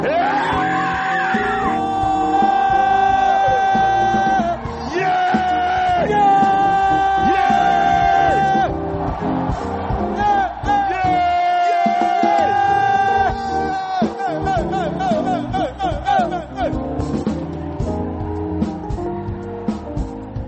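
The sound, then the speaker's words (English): A crowd of people shouting, screaming and whooping all at once, a loud sustained roar with high wavering cries layered over it that keeps going without pause for the whole stretch. “Shout, scream. When it comes to your miracle.”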